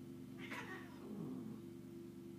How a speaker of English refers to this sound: And the cats fought.